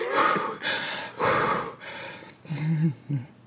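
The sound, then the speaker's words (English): A person chokes and gasps for breath: harsh, breathy rasping bursts, then a couple of strained, voiced wheezes near the end. “I can't. I'm choking.”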